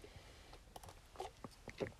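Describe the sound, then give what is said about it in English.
Quiet mouth sounds of someone sipping hot morning coffee with coconut oil in it: a few soft slurps and wet little clicks, then a swallow. No one speaks. “I'm going to take a little sip of coffee in the morning.”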